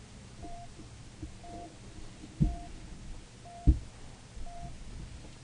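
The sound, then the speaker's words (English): A heart monitor beeps steadily, with short, soft electronic tones about once per second over low background rumble, punctuated by a couple of dull thumps. “Got to make sure that we get a heartbeat monitor going.”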